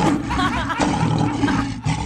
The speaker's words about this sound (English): Well, wow. A fast tiger. Did we need the sound effect?